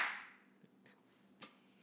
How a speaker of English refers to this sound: Ready? We'll do the clap thing.